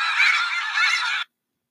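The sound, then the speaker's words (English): Geese honk loudly in a dense, overlapping burst lasting just over a second, then it cuts off abruptly to silence. No one speaks. “Dude, I frequently call geese chickens on accident.”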